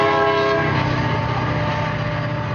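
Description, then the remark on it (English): A loud, sustained train horn blares over the heavy rumble of a passing train in Brevard County, Florida, the steady tone holding for the full couple of seconds with no voices. “The train stopped the governor from talking for almost a minute”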